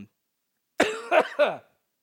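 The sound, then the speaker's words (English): Three quick, harsh coughs in a tight burst, fairly loud, after a brief silence, with no talking. “But it just keeps like pooling, and then I'm like, I gotta cough, and then I cough, and then I keep coughing. So a lot of coughing.”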